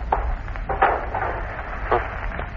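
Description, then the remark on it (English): A wooden door is pushed shut, with a few dull knocks and scraping rattles spread over a couple of seconds against a low rumbling background. No one speaks. “Now go and close the door up.”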